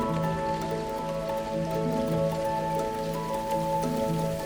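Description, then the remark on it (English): Steady rain patters on a hard surface, a dense, continuous hiss of drops with no pauses, even in loudness, with a faint low hum beneath and no voices. “It's one of my favorite days when I wake up and it's raining, especially if I don't have to drive.”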